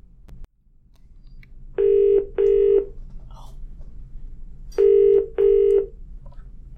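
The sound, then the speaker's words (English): A transatlantic phone call rings out with a steady tone that comes in short double bursts, repeated twice with a gap between, clear over quiet line hiss. “and for the chance to make our first transatlantic phone call for the show.”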